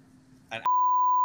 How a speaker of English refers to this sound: Oh, why'd you say that loud? Bleep it out. Bleep it out.